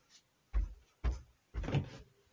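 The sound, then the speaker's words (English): A door is opened with three solid clunks in quick succession, each with a low thud and rattle, fairly loud, with no talking. “Open the door.”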